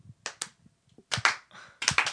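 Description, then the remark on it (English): A few sharp, crisp 80s-style handclaps ring out alone, two quick ones followed by longer, splashier bursts with a bright, reverb-washed tail in the style of a retro drum-machine clap. “80s clap.”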